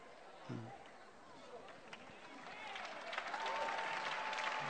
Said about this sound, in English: You can clap your hands better than that.